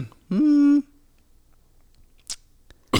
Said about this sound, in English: He's coughing again. I'm not.